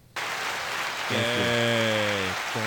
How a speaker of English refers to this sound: I have to stop that because it'll loop. It won't stop clapping.